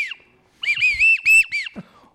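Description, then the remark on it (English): A person whistles a quick series of four or five trilling, warbling notes, imitating the call of a pintail duck, with a brief soft whistle before and a faint breath after. “I'm saying that your pintail whistle is amazing.”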